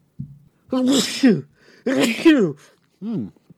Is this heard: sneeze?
yes